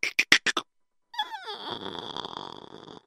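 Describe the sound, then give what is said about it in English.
Five quick, sharp taps, then a pause before a door hinge creaks open with a rising squeal that settles into a long, grinding squeak, moderately loud, as the door is held open to go outside to a well for water. “I'll hold the door open.”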